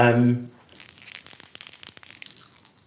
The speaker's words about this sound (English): Okay, what was that? That was the dinner bell.